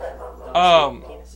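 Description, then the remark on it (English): One short, loud dog bark rings out, a single bright yelp lasting under half a second, with quiet background before and after. “Dog attack. They don't like that story.”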